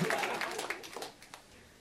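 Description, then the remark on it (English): A crowd claps in a brief burst of applause when asked to clap if they are fired up: dense, crisp claps at first, quickly thinning to a few scattered claps as it fades out. No one speaks. “Clap if you're actually fired up about this.”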